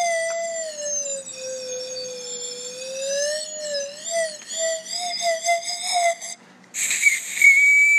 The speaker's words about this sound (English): Opus 69 for the whistle-a-phone